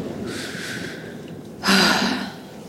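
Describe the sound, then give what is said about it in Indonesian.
Heavy, breathy panting: a long noisy inhale followed by a louder, forceful exhale, as a person catches their breath after rapping. No talking. “Sampai ngap. Bentar, tarik napas dulu.”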